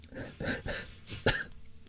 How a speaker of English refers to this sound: Oh, you turned off his mic. He's coughing. Sorry. It's because you're smoking too many meats.